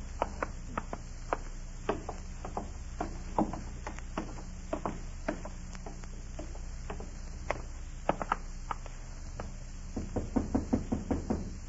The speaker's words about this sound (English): Stand out there and knock.